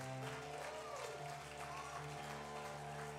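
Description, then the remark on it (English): A church audience claps together in a steady, dense wash of applause, loud and continuous throughout, with sustained music playing underneath. “Well, church, I think you ought to put a hand clap together.”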